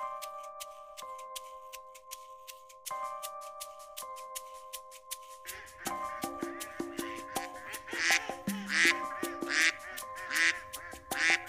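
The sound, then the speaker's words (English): Birds call loudly and repeatedly with harsh, quacking bursts that crowd together in the second half, after an opening stretch of steady ringing tones and light ticking. “Laughing at birds.”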